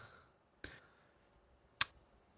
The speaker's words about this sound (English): Don't search it. I see you typing.